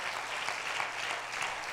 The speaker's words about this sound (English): Clap your hands one more time and let's praise the Lord.